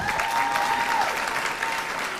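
An audience claps steadily for a man who has just shared a healing testimony, a dense, even wash of many hands at a constant loud level, with a thin sustained tone faintly audible over the first half.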